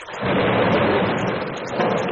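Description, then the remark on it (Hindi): Heavy rain pours down steadily as a dense, continuous hiss, with a low rumble of thunder rolling beneath it throughout; afternoon rain that has gradually grown heavier. “दोपहर बाद शुरू हुई बारिश धीरे धीरे तेज होने लगी थी।”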